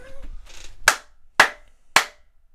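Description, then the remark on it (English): Three sharp hand claps made to synchronize audio, loud and evenly spaced about half a second apart, each a crisp snap that dies away quickly. Faint murmuring and a soft rustle come just before. “Now I keep clapping but to make sure the audio is synchronized.”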